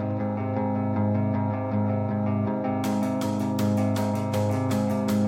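Opening of the title track of a singer's album: steady, effect-laden guitar chords pulse in a regular rhythm, then crisp drums with bright cymbal hits come in about halfway and drive the beat forward. No vocals yet.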